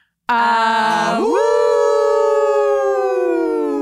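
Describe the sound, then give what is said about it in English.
People howl like wolves, a loud sustained cry that starts low, swoops upward in pitch, then holds a steady, slightly wavering high note until the end, with no talking. “And then we howl.”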